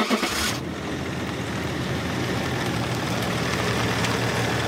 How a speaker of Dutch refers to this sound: ronkende motoren en dampende uitlaatgassen. Dat is toch wel waar je aan denkt als het over het transport over de weg gaat.